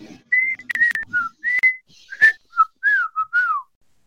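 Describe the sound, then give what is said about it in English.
A person whistles a short, wandering tune of about ten clear notes, some sliding up or down, fairly loud with brief pauses between phrases and no talking. “So anybody listening to us, you're like, please stop whistling now.”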